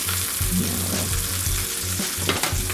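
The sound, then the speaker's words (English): Steady, dense sizzling of meat searing and browning in a hot pan as it is turned over, loud, with a constant crackling hiss and low rumbling underneath throughout. “Turn that over. You want a bit of color.”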